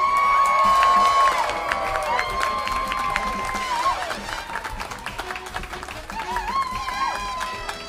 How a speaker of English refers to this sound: But first, the woman who brought all of this to me, a big round of applause for a dear friend of mine, a brilliantly creative producer, boss woman, and just badass in general